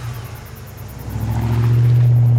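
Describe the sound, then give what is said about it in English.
A man gets in his truck and starts for home: the truck engine rumbles low and then revs up, growing louder and higher in pitch as the truck pulls away, with a steady droning hum building over about two seconds. “Gets in his truck and starts for home.”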